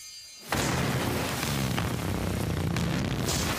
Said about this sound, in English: It's a bass boosted fart. But it's like if you crank the volume way up on a speaker that's like not really connected